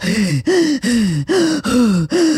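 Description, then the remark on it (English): A person imitates their own heavy, out-of-breath panting while hiking: six loud, voiced gasping breaths in a quick, steady rhythm, each one a strained rasping pant with brief gaps between. “Could you hear me breathing like that?”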